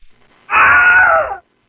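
A single loud Wilhelm scream stock sound effect rings out alone, a short strained cry lasting under a second with a pitch that slides downward before cutting off abruptly.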